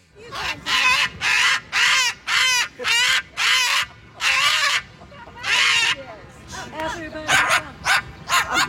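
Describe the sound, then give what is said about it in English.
A cockatoo barks at a dog, imitating a small dog's bark: a run of about eight loud, harsh, yippy barks in quick succession, then a pause and several shorter, choppier barks. “Actually, it was a cockatoo barking at a dog.”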